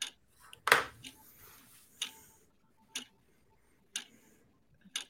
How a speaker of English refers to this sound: Timer has started.